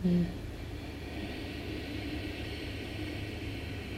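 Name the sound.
ocean waves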